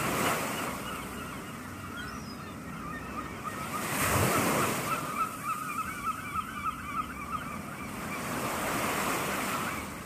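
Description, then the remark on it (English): Ocean surf rushes steadily, with a wave breaking near the middle, while seagulls cry repeatedly over the water in a run of short, bright calls. No one speaks. “So let's listen to some more seagulls, some more waves, and we'll get back and finish this podcast up.”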